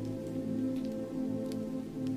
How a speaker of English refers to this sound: The rain comes down heavier, finding its way to the earth, trickling down branches and falling with loud splats on the mossy stones and sweet forest floor.